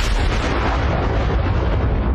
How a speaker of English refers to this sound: And everything goes black. And you hear thunder.